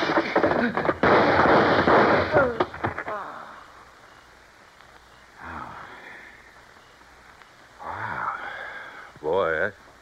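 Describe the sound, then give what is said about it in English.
A sudden loud crash of a thrown rock smashing through a car windshield as the car turns, a dense burst of shattering glass lasting a couple of seconds, followed by quieter moments and brief voices. “and throwing that rock in his windshield when he turned was just enough.”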